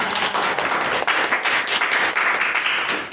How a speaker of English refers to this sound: So let's welcome our instructor for today, and let's welcome the applause.